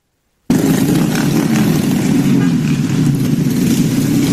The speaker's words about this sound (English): First of all, those are scooters and I guess mopeds. So I don't think they qualify as a bikers in LA.